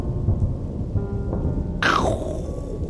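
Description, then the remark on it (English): A sudden sharp thunder blast sound effect cracks out over a steady rumble of rain, its bright burst sweeping down into a lingering roll that fades away. “It's the cleansing blast of thunder is back.”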